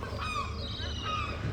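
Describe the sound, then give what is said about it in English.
Young gulls learning to fish call over and over at a harbour, several harsh, overlapping squawks crowding together in a steady chorus, with wind cutting across the harbour and a dull low rumble of background noise. “But there's a lot of young gulls learning to fish.”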